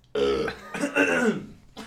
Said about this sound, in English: I've got a burp, so I'm going to do it away from